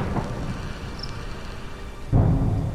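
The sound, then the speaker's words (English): Fireworks rumble and crackle steadily for a couple of seconds, then a sudden loud, deep burst hits near the end and keeps booming. No one speaks. “The ones that crackle and keep going.”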